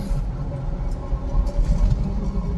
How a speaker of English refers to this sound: Like a truck.